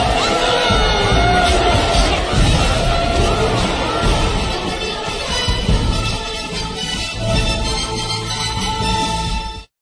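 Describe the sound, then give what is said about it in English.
A large crowd cheers and whoops loudly and continuously, a dense wall of shouting voices and excited yells that holds steady for about ten seconds before cutting off abruptly. “The crowds are going nuts!”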